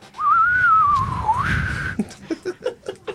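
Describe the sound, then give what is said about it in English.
A person whistles a single sustained, gliding note that wavers up and down for about two seconds, followed by a series of short rhythmic bursts that sound like stifled chuckles. “Hang Tim on, give pulls me his whistle out of his pocket.”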